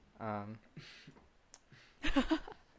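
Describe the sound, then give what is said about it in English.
A brief vocal sound, then a sharp click followed by a short rattling clatter as dice, thrown at a laptop, tumble and bounce across a hard surface before settling. “I threw my dice like at my laptop first.”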